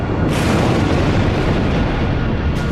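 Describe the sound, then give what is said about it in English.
A sustained, loud rumbling roar of explosions as an imploding planet sends shockwaves buffeting the Jupiter 2 spaceship, dense low booms churning continuously for the whole stretch with no pauses and no voices. “With the planet beginning to implode, our space pioneers are being buffeted by shockwaves”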